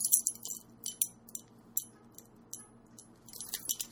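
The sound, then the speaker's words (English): Car keys jangle and clink in repeated bright bursts, fairly loud, as if shaken or handled in a hand, with a low background hum underneath and no talking. “Sir, are those your car keys?”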